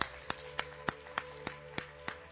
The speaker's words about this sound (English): So, I want to say thank you to each one. Give the clap to the worship team.